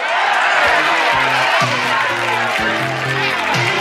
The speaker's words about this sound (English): Oh, are they cheering for this nigga now? They were just booing him.